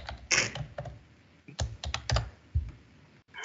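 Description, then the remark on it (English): Rapid clacking of keys on a Windows 98-style computer keyboard, a burst of uneven keystrokes with short pauses, fairly loud, with no voices. “You got that Windows 98 keyboard, girl.”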